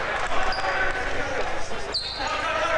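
A loose basketball thuds on a hardwood gym floor during a Sherrard versus Monmouth-Roseville basketball game, amid steady crowd noise, with a couple of high sneaker squeaks cutting through.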